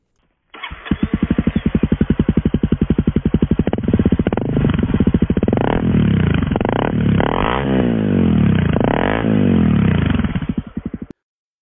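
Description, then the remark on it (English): A Honda motorcycle engine, just fitted with a replacement axle bushing, sputters to life and idles with a rapid, rough putter, then revs up and down several times, loud, before cutting off abruptly. “I crossed the border, installed the bushing, and started up my motorcycle.”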